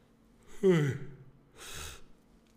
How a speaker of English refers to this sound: That was a little yawn.